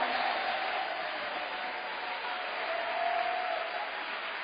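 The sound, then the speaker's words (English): An audience applauds in a dense, steady wash of clapping that holds at an even level for several seconds, with no clear voices rising above it. “I don't know why you are sitting down and you are not rising up to clap.”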